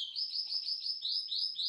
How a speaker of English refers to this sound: Oh, you can hear the birds, the canaries.